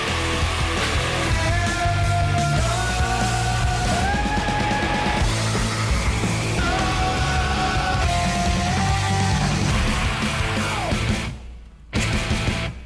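A rapid montage of raw, sustained rock screams spliced together over loud distorted guitars and drums, each howl holding a strained high pitch before cutting abruptly to the next, ending in a brief silence.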